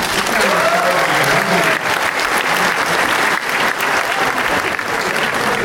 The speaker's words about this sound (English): Give him an applause.